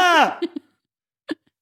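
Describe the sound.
A person vocally imitates the Wilhelm Scream movie scream: one short, loud yelp with a bright, strained tone that swoops downward in pitch, followed by a few faint mouth clicks and a breath.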